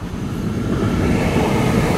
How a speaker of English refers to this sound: And that way, there's a train, walking past the train tracks again.